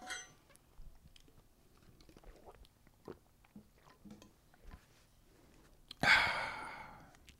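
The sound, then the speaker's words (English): Faint, scattered gulps and swallowing clicks from someone drinking cold water, followed by a sudden loud, breathy exhale of relief near the end. “Cold water. Very good.”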